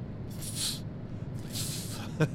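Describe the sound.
A voice imitates a snake with two drawn-out hissing sounds, each lasting about half a second with a short pause between, followed by a brief faint vocal blip; the hissing tests how a microphone handles sibilance.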